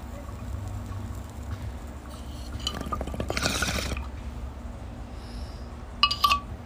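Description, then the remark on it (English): Water bubbles and gurgles through a bong in a steady burst lasting a second or two, fairly loud, followed by quiet and a couple of short bright sounds near the end. “Let's take this rip.”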